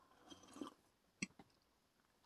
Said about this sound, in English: excuse me, take a sip of coffee.